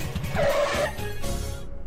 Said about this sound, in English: The two soon reached the end of the route and slammed on their brakes to stop.